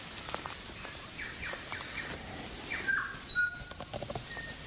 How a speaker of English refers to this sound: Yeah, and there was saddleback flew past. So I think I can hear some saddleback in the background there. Yep.